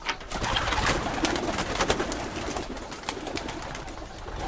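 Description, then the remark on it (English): Several homing pigeons in a flock coo softly and continuously, their low, throaty murmurs layered with scattered clicks and fluttering rustles, with no voices present. “Recent research on flocks of homing pigeons has shed some light on this very question.”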